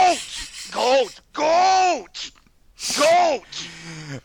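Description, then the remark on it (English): A person imitates a goat with a series of about five nasal, wavering bleats, each one rising and falling in pitch, with short pauses between them and no other sounds. “if you could do the boat voice that you've done in the past, but do it with goat instead.”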